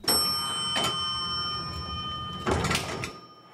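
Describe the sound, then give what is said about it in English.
An elevator chime rings and lingers as the elevator arrives at the ground floor, followed by the whooshing rumble of its doors sliding open, clear with no one speaking. “When the elevator doors opened on the ground floor, the Canadian couple emerged to find the once empty lobby was full.”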